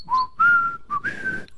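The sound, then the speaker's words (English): A person whistles a short melodic phrase, clear, with several sustained notes that slide up and down in pitch, separated by brief gaps. No one speaks. “I walk and I whistle, yet wallowing follows.”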